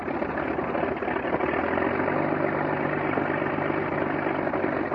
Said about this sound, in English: This engine is a 180 horsepower Mercedes six-cylinder engine, the most famous of all the aircraft engines used by the Germans during World War I.